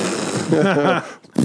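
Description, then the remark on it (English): A voice makes a buzzy, sputtering mouth imitation of a fart, one short wavering blast, followed by a brief pause and the start of another sound. “It'll just be a bunch of elevator music, and like every time I talk, just be a fart, or like beep, beep.”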